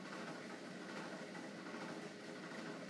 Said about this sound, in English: I'll excuse my daggone loud refrigerator. I don't know what's going on with it, but I refuse to buy a new one until it conks out.